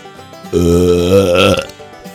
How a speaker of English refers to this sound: they get the Undercountry Music News Wet Belch of the Week, because they got nothing!